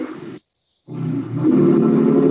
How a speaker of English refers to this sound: No, there's a truck revving up in the background,